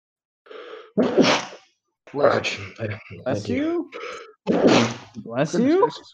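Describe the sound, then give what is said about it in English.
Two loud sneezes about three and a half seconds apart, each a sharp explosive burst, with brief voiced sounds in between. “Bless you.”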